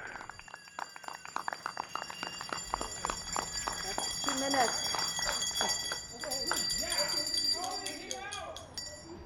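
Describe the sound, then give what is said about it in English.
Steady rhythmic clapping with ringing bells holding bright sustained tones, joined midway by rising and falling whistles, in a nightly two-minute chorus of bells, claps and whistles in Manoa to support healthcare workers. A voice speaks briefly over the din. “He leads a nightly chorus of bells and claps to show support for healthcare workers.”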